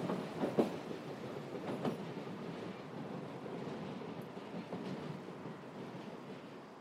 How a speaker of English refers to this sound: Slowly, the train pulls away from the platform, crosses the River Clyde. Soon we leave the city behind and zoom through a green landscape, moving south towards the west coast.